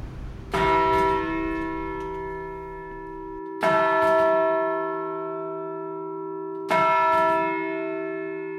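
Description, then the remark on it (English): The Great Bell of Bow in London, a 2-ton modern-cast church bell, strikes three times at a slow, even pace, each loud clang leaving rich, tuned overtones and a low hum that rings on between strikes. “Because they're a modern casting, all the harmonics beautifully tuned in there, and the hum goes on and on and on.”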